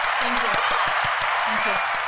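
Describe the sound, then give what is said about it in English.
Dense, continuous applause for America's birthday, a steady wash of many hands clapping at once, fairly loud, with some voices faintly mixed in underneath. “Have applause?”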